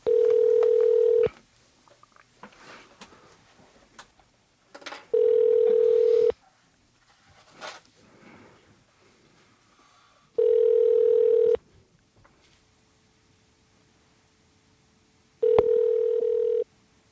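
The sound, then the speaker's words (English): A telephone line tone, as a call is put through to a phone in a voice booth, sounds in four steady, buzzy bursts of about a second each, separated by several seconds of near-silence with faint clicks and handling noise. No one speaks. “If it's possible, just patch us through to the phone in the voice booth.”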